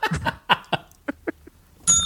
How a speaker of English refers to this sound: That was a bell.